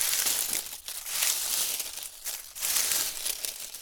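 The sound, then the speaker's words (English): Steady rustling of grass made by a squirrel, a dry crinkly sound that swells and dips several times without pausing. No voices are present. “when they all hear a rustling sound behind them.”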